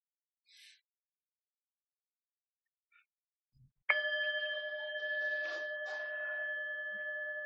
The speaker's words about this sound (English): And then I'll ring the bell. I may need to practice.